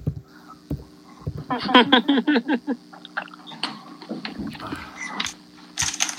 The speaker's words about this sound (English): When you hear typing, it means that we have no idea what the fuck is going on.